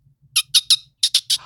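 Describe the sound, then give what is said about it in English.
A person imitates a dolphin with a series of seven shrill, squeaky chirps in two quick bursts, three then four, high-pitched and loud against a faint low hum. “Do you want me to do my dolphin noise?”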